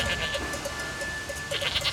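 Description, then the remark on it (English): Goats bleat in quick, repeated calls as they cross a railway line at a level crossing, bunched near the start and again toward the end, over a steady background hum, with no one talking. “arrived at the level crossing to find that the distress bell he had heard was only some goats safely crossing the line. Goat bells?”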